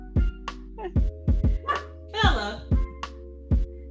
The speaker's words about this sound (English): How you gonna lazy bark? She didn't even lift her head. The bark just lifted her head off the thing just a little bit.